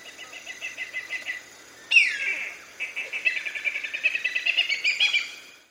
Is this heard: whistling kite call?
yes